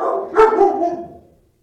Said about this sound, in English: Like I said, there was going to be a moment where there'd be some barking. There's some construction happening.